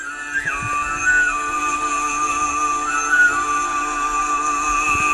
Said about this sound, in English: Oh, he's whistling it too, so it's just... So he's like a human didgeridoo.